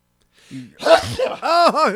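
A single sneeze bursts out after a brief indrawn breath, followed by a couple of loud, sing-song vocal exclamations.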